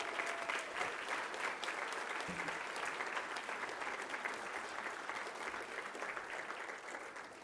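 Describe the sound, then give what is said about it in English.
An audience at an awards evening applauds a speaker steadily, a dense wash of many hands clapping at an even, sustained volume for several seconds before easing slightly at the end. “Let's please give Carol another round of applause.”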